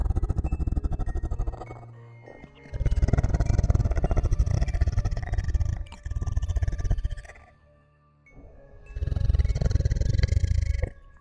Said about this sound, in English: What does it sound like? It sounds like a growl. What? Deep and guttural, heavy bass.